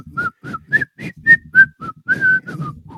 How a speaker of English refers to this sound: And so he sends us this invite, and I log on, and all I see is this doofus in a captain's hat whistling a jaunty tune. And it's like, who does he think he is?